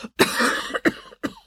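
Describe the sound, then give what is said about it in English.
A voice imitates the wet, rattly coughing fit of a woman with fluid in her lungs: one long hacking cough followed by two shorter, sharp coughs, fairly loud with brief pauses between. “broke down into another coughing fit”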